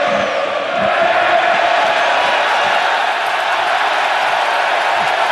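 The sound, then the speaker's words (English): A huge standing-room-only crowd at PNC Park roars continuously during a Pirates–Reds baseball game, a dense wall of cheering and shouting with rhythmic chanting of "Cueto, Cueto" aimed at Johnny Cueto, loud and unbroken for the whole stretch. “the standing room only crowd trying to get under Johnny Cueto's skin, and they might be.”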